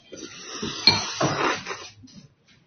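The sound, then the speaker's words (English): Wet, noisy slurping of Cinnamon Toast Crunch cereal and milk from a bowl, a few ragged gulps in a row with a small clink of spoon on dish, fading out near the end. No talking. “Are you slurping Cinnamon Toast Crunch?”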